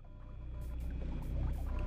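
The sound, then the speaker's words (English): Video game water splashing in a few quick bursts over a steady low rumbling drone, moderately loud, with no voices, in a level with things lurking in the water. “It was Dark Forces had these things in the waterways that attacked you in the water levels.”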